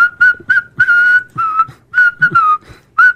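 A person whistles a quick, choppy tune in short bursts, about ten notes with brief gaps between them, fairly loud with no talking.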